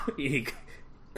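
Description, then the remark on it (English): A person imitates a character coughing forward as he slowly begins to open his eyes: a short, throaty voiced sound, then a sharp breathy burst, and after a brief pause another quick rasp. No words are spoken. “he coughs forward and slowly begins to open his eyes, and like you can see him like attempting to clench his fists.”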